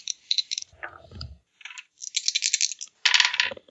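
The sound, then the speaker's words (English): Dice rolled for a kinesics skill check clatter and tumble across a hard tabletop in several quick bursts, fairly loud, with a dull low knock partway through and no voices. “Okie doke, let me find my kinesics skill. It's been a while since I rolled some dice.”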